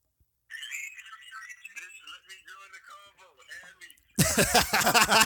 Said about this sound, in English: See if he answers. Yeah. He's probably not going to answer. If you guys can hear the ringing. Yeah, put it closer to the mic.